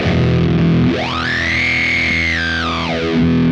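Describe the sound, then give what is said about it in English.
A sustained, distorted electric guitar E chord through a Marshall amp and an effects pedal, played without the whammy bar, its tone sweeping upward into a bright, resonant peak, holding there, then sweeping back down as the chord rings on. “Then I've got the pedal here. So without whammy bar.”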